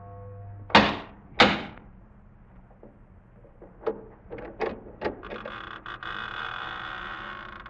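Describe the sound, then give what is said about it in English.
Two heavy, resonant knocks land on the massive oak door of a chateau, followed by a few latch clicks and a long, drawn-out creak as the door swings open. No voices. “In a few moments, my bare feet were padding up stone steps, and I stood in front of the massive oaken door.”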